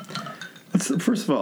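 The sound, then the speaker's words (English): Small glass shot glasses clink together a few times in quick succession in a toast, bright taps over a low murmur of voices in the background. “I got these little shot glasses.”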